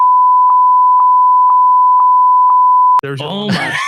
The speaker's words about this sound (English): There's the long bleep.